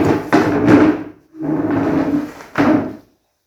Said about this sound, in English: So you just pull that chair and just sit here.